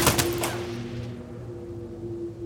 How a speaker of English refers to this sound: Thunderous gunfire is heard miles away. The stricken Ford begins to roll away towards the side of the road. The fusillade of gunfire follows it.